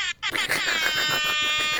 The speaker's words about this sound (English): Where's my airhorn app?